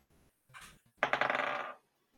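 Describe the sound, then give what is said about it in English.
Dice are shaken briefly, then tumble and clatter across a hard surface in a quick burst of bright, rattling clicks that fade out after under a second, rolled in a tabletop role-playing game to cast a firebolt. “I'm going to cast, like we promised, she's going to cast a firebolt. Okay. So, gonna roll.”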